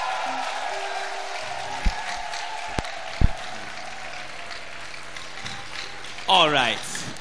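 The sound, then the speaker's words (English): An audience claps for Jesus in a steady, dense wash of applause that holds for several seconds, with a couple of sharp knocks midway and a brief vocal whoop near the end. “If you're beautiful, if you're a beautiful man, can you put your hands together for Jesus?”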